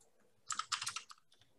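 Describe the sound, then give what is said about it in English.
A quick burst of rapid clicking keystrokes on a computer keyboard, crisp, lasting about a second with no voices, someone typing in a chat. “I was just typing faster.”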